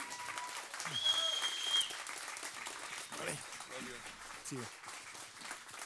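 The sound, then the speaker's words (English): A church audience applauds steadily for several seconds, welcoming a pastor who comes up to preach. A dense wash of clapping with scattered voices and a brief whoop rising over it, holding a fairly even loudness throughout. “Can you clap your hands for Jesus one more time and just like, yeah.”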